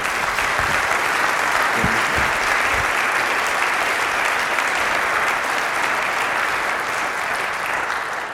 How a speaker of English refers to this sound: Feel free to applaud him.